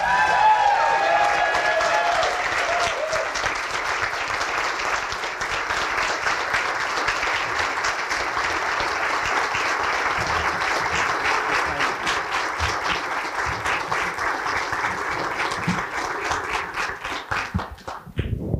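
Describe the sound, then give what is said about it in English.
A large audience at a Libertarian Party event applauds steadily for nearly twenty seconds for Jeff Dice, Ron Paul's former chief of staff and president of the Mises Institute, a dense wash of many hands clapping at once that holds loud and full before thinning out at the very end. “So give one more round of applause for Ron Paul's former chief of staff, president of the Mises Institute, Jeff Dice.”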